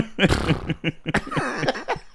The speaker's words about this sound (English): He's farted again. Oh, sorry. There's another one. Trumping.